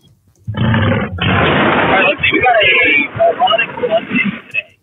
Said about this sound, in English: It sounded like you just got run over by a motorcycle. That's the … growl. Oh, that was the … growl.